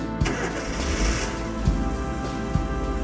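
A car engine cranks and catches, its low rumble steady, with a few sharp revving bursts rising over the idle. No one speaks.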